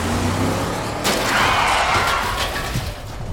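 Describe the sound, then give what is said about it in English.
A roaring car engine runs throughout, broken by a sudden loud metallic impact, then a grinding, scraping rush of noise as one car rams another on a road, trying to knock it off the road, with a smaller knock near the end. “They're trying to knock us off the road!”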